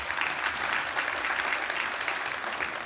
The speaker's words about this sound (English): If you agree with me, come on, give me a round of applause. Praise the Lord.